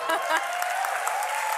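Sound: audience applause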